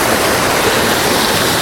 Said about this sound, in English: So what I'm going to do is put the camera down into the water.